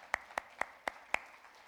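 Five crisp, evenly spaced hand claps ring out at a steady pace, sharp and bright, with no voices, as if clapping to start a round of applause.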